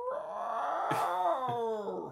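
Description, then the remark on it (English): A person imitates the roar of a monster toy whose mouth opened and roared when a button was pressed, with one sustained, growling, wavering vocal cry lasting about two seconds, fairly loud, with no other talking. “he bought me this really cool Godzilla toy that if you press the button, its mouth opened it and it roared. It was like...”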